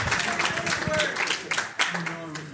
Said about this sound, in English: Big round of applause.